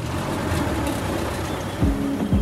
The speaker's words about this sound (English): So we hop in his antique truck, a 1964 Dodge Power Wagon, classic and indestructible.